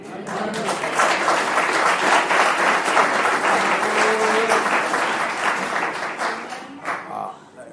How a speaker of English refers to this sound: I'm glad you are clapping hands, and it's very good. It's not a demonstration that people have money. It's a demonstration that people take the work of the Lord seriously.